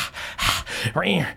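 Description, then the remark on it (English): Someone imitates heavy panting up close: a couple of rough, breathy huffs, then a longer voiced gasp that rises and falls, loud and alone. “You see Papa scrambles in from under the door, panting.”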